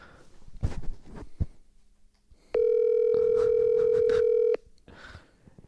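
A loud, steady telephone dial tone hums for about two seconds, flat and unbroken, heard through a phone speaker held up to a microphone, with brief muffled voices and handling noise before and after it.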